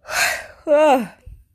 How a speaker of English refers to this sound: Yawning.